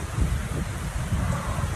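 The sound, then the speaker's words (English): Steady rain hisses continuously while a deep, rolling rumble of thunder sits underneath from an approaching thunderstorm, a dense, loud storm wash with no voices. “And the thunderstorm keeps getting closer and closer, and there's no way like it could be timed any better.”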